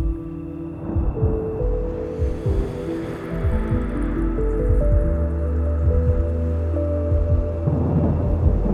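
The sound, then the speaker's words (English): A steady rain shower hisses continuously at moderate volume, mixed with deep low rumbles of hushed thunder and a sustained, humming tonal drone underneath. No voices. “The rain shower and hushed thunder move with intention to your center.”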